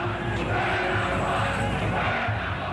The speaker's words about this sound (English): The Montreal Expos get a cheer from their fans.